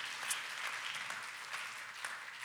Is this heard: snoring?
no